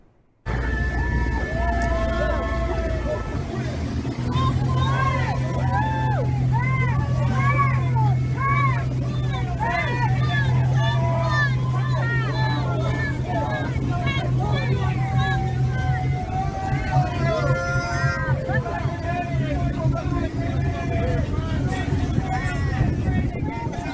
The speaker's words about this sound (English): I sent to Matt, the very wonderful producer, a clip of a Trump boat parade in Florida